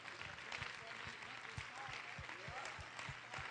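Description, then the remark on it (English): An audience claps their hands together in a steady, rhythmic beat, the many claps blending into a full, sustained applause with faint voices mixed underneath. “You ought to clap your hands for that.”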